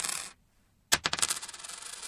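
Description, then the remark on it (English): Two coins dropped in turn: the first, a fake coin, gives a brief, dull clatter that stops quickly; the second, a real coin, lands with a bright clink and keeps rattling and bouncing for over a second. “First one's fake. It doesn't vibrate as much.”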